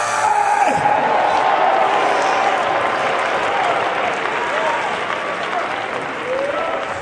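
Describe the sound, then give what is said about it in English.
A church audience erupts in sustained applause mixed with shouts and cheers for God during a sermon, a dense, steady roar of clapping and raised voices that stays loud throughout. “Somebody shout.”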